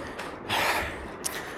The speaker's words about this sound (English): Note, and come to terms with the sound of our louder, labored breathing.